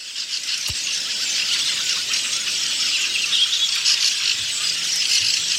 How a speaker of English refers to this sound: Yeah, birds singing. It's really a nature I didn't do with this anything, but on springtime there are a lot of birds and they are all making their bird noises.